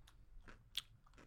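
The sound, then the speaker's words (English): Crisp crunches of someone biting into a pickle, a few wet snaps spread over a second with one sharper bite in the middle, no talking. “Yeah, guys, ASMR crunch.”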